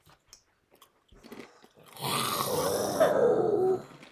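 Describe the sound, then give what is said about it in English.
After a couple of seconds of quiet shuffling, a group of voices lets out a loud, sustained roar imitating a jaguar, a gritty, growling blast lasting nearly two seconds before cutting off. “Then can I get a final Jaguar roar from everybody real quick?”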